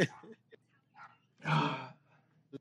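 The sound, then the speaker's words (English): A dog barks in a few short, sharp bursts, with one longer, louder bark in the middle, amid faint voices. “Yes, DR, be quiet. Oh, my God. Get the stupid dog.”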